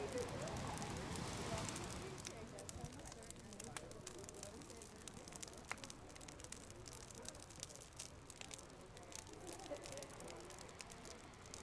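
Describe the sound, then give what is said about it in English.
A bonfire on the beach crackles and pops steadily with frequent sharp snaps over a constant low roar of burning, moderately loud, stronger and fuller in the first couple of seconds. “I'm here tuning into the crackles of the fire.”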